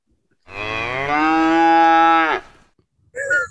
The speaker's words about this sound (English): That was well timed. That was good. That was very good. I just understood the moo.